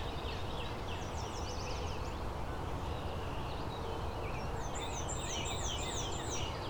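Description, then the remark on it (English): A black-throated blue warbler sings a quick series of buzzy, wavering high notes, repeated in short bursts over steady outdoor background noise. “Is the black-throated blue warbler just doing a faster version of its song?”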